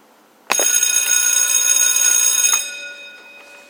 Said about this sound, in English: All right. We are back. You heard the bell ring. Time for class. time for class, my friends.